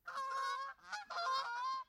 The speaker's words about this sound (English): Here we are with the real goose.